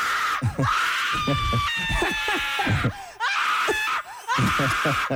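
A loud screaming sound effect: several shrill voices shriek over one another in a continuous, frantic burst, with only brief dips before the screams surge back.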